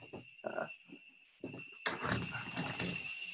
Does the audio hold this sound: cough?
no